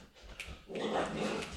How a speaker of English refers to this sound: Oh my God, what's happening? They're fighting. Oh. All right, well, I guess the dogs are interrupting the podcast, so can we get them to stop?